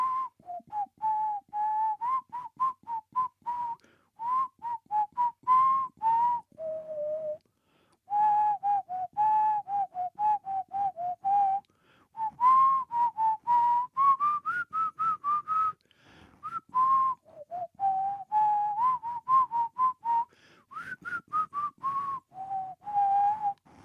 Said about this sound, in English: I'm going to whistle a tune now. Let's see how long it takes anybody to get it. So I'm not very good at whistling, so it doesn't matter.